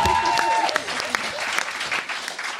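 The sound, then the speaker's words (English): A crowd claps for both competing teams, Team Montague and Team Capulet, in a dense, crackling patter of many hands, fairly loud and sustained throughout, with a brief whistle-like tone near the start. “Round of applause for both teams.”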